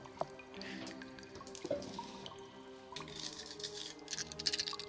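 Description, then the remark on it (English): Many dice, sixty eight-sided dice rolled for damage in a game, clatter and tumble together, a quiet, scattered run of rapid hard clicks and rattles with a few sharper knocks, lasting several seconds without any voices. “Sounded like a lot of dice.”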